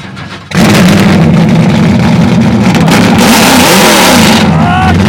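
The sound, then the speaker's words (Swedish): A car engine cranks and catches after a brief quiet moment, then roars loudly and steadily, revving with a deep rumble that holds for several seconds before easing slightly at the end. “Och nu ska du starta din bil.”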